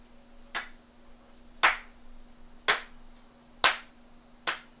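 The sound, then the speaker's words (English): A slow clap: five sharp, crisp hand claps spaced roughly a second apart, each ringing briefly, with no talking and a faint steady hum underneath. “Yeah, get that slow clap in there.”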